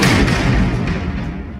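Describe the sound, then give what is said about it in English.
A huge, deep mechanical slam booms out as spinning mechanical platforms come to the end of their spin, its heavy low rumble and gritty clatter filling the moment before slowly fading. No voices are heard. “and they just spin and make these loud ratcheting noises, like, and they slam at the end, make this huge, deep slamming sound.”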